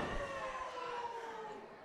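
A single heavy thud of a running big boot to the wrestler Caribbean Tiger and a ring slam during a wrestling match hits right at the start, then a loud sustained roar of voices carries on and slowly eases off.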